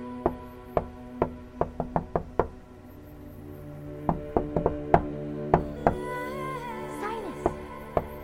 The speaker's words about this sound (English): That is me banging on my desk.